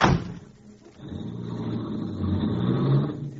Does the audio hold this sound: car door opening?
yes